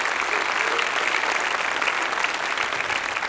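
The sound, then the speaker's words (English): An audience claps together in a dense, steady wash of applause, loud and sustained throughout with no pauses and no voices standing out. “Hey, let's give a big hand clap to those that are watching us on podcast, vidcast.”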